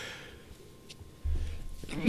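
A single sharp sneeze bursts out at the very end, after a moment of quiet breathing and a low rumbling inhale.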